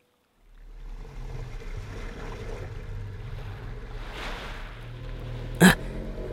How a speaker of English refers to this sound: A boat! Hey, watch out!